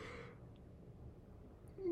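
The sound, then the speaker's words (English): A breathy yawn trails off in a long exhale, followed by a quiet pause and a brief low voiced groan at the end. “That was a fat yawn.”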